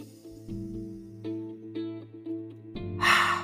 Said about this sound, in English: Ready? Okay, breathing in. Exhale. That's one. Breathing in.